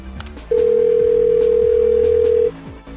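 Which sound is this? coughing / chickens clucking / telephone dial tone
telephone dial tone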